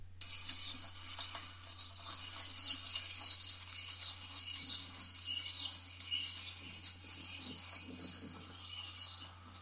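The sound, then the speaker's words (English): A screaming party of swifts: dense, shrill, high-pitched screeches overlapping continuously for the whole stretch, loud and unbroken, with a faint low hum underneath and no talking. “I reckon, well, is that a screaming party or whatever it's called for the Swifts?”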